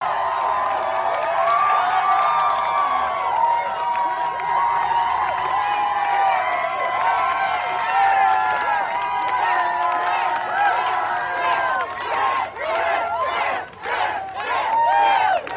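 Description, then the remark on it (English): A large crowd of Apple Store staff, reporters and Apple fans hoots and cheers loudly and continuously as a man walks out of the store, many voices overlapping into a roar, with sharp bursts of clapping breaking through toward the end. “And he's walking out of the store and all the staff is there and there's like reporters there and like Apple fans there and they're all like going nuts and like hooting and clapping.”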